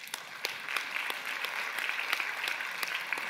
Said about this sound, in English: Amen. Amen. Can we clap for that?